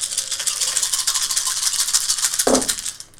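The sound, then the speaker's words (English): Dice rattle steadily for about two and a half seconds, a busy clattering shake that ends with a soft thud as they land, with no one talking. “My dice just really hate Cora.”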